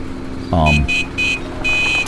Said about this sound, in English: Give it some beeps, sit there for a minute. If nobody comes out, then just head out. So Billy McConnell honks the horn as he comes pulling up to the farmhouse.